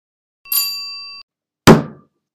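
bell ringing

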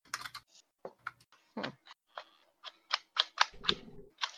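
typing on a keyboard

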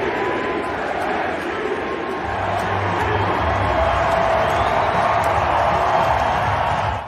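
arena crowd chanting MVP

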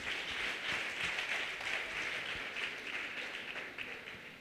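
audience clapping and applauding

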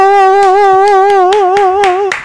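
applause

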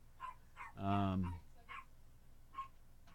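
dogs barking

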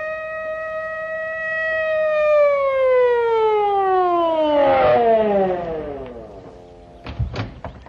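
police car siren approaching

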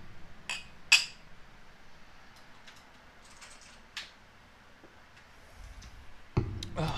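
glasses clinking

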